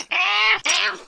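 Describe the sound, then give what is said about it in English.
A 12-year-old male cat meows twice in quick succession, fairly loud, the first call drawn out and the second slightly shorter, with no talking. “He's not a kitten. Kipper, have you ever seen the real Father Christmas?”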